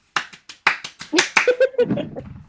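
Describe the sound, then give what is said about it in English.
A quick, uneven burst of about eight sharp hand claps, crisp and fairly loud, followed by a brief voiced sound like laughter or murmuring as the clapping trails off. “I'm clapping is hard. Hold on.”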